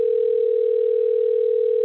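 A phone ringback tone after a call is dialed: one steady, unbroken electronic hum at a single pitch, fairly loud and clear, holding without change for under two seconds with no voices.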